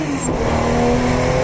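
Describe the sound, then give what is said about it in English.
A race car engine roars loudly at high revs, its pitch climbing steadily as it accelerates past the grandstand, a continuous harmonic whine with a broad noisy rush and no voices. “All right, going past the grandstand.”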